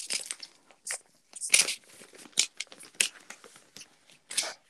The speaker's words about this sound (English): Opening copy paper.